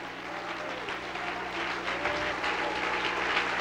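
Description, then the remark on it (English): A church audience claps their hands in praise, a dense, steady wash of applause from many people that holds at an even, moderate loudness throughout, with no voices standing out. “Come on, let's clap our hands and praise him.”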